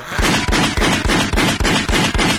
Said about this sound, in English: Get the gunshots too.